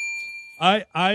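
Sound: bell ringing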